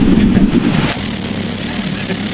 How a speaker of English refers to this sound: That's more like a fart. I don't think this is... That's more like a really long British fart, you know? Like, no drum roll, huh?